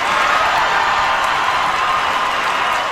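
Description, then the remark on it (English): A large crowd at the Tony Awards erupts in sustained, loud applause and cheering after De Niro says 'F*** Trump' on stage; a dense continuous wash of clapping and shouts holding steady for the full three seconds with no break. “The crowd goes wild.”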